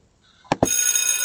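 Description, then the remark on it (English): A bell rings out to mark the return from a broadcast break: two quick metallic strikes, then a bright, shimmering ring that holds steady and loud to the end, with no voices. “We are back, and I hope you heard the bell.”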